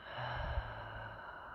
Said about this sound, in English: Take 3 very deep, slow breaths. Inhaling through your nose, breathing in love and light. Exhale through the mouth,